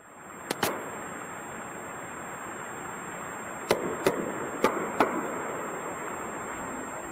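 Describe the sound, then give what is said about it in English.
Underwater banging heard by the Canadians from under the ocean, recurring at 30-minute intervals, like knocking: a quick pair of sharp bangs, a pause, then four evenly spaced knocks in a steady rhythm, all over a constant hissing background with no voices. “the Canadians heard banging noises at 30-minute intervals from under the ocean”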